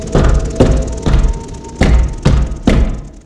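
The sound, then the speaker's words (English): Heavy knocks on a door, two sets of three dull, booming thuds with a brief pause between the sets. Each blow rings out and decays, with no voices. “And shortly, there comes a knock upon the door.”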